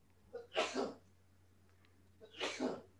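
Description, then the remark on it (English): Two sneezes roughly two seconds apart, each a short intake followed by a sharp, breathy burst, over a faint low hum, with no talking. “Bless you.”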